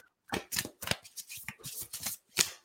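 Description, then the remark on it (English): A deck of cards being shuffled, a string of crisp, papery riffles and flicks coming in quick, uneven bursts with no talking over them. “I'm gonna do some more shuffling and you tell me when to stop.”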